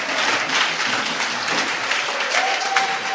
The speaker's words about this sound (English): All the men in the house clap well so that God will show you mercy.